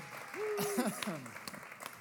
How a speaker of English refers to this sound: Help me welcome them with a round of applause.